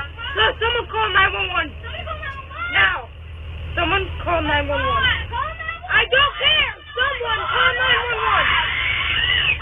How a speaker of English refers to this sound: All the other kids are screaming.